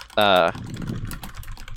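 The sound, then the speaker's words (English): A short, loud buzzing tone gives way to a rapid, uneven clatter of computer keyboard typing, fast and busy but moderately quiet, continuing to the end. “Types furiously.”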